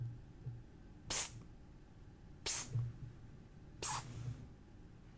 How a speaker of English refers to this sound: What was that? That was a weird yawn. I thought you were going to cough up a hairball, girl. You're not going to cough up a hairball, are you?